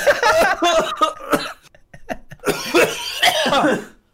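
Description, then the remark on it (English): Loud coughing fits from two people after something went down the wrong way and up one's nose, harsh repeated bursts with a brief lull in the middle before the spluttering resumes, with some strained, almost laughing sounds. “Both coughing.”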